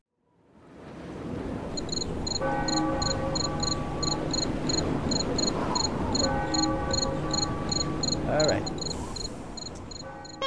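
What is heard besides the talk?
cricket chirping sound effect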